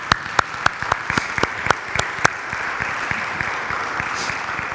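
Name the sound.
audience applause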